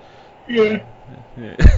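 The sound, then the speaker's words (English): A breathy yawn: a drawn-out voiced exhale, a softer stretch, then a louder, rougher breathy burst at the end, with no clear words. “Hence by the yawn.”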